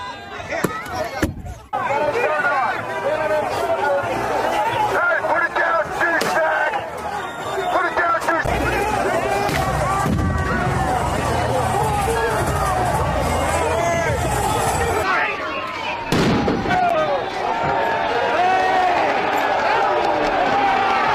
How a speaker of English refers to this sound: And then all of a sudden... Wow. Some sort of flash or smoke grenade was thrown into the crowd. This incites the crowd.